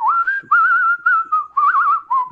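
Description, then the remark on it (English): A person whistles a short wavering tune, imitating another man's whistling, several held notes with a pronounced vibrato wobble, separated by brief breaths, loud and clear with no talking. “what is that in his whistle? That like vibrato, like he's like.”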